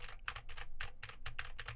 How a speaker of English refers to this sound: Now I am typing on my keyboard with Gateron blue switches to see how much of my voice versus how much of the keyboard it picks up.